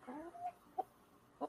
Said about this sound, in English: out there, there's a chicken.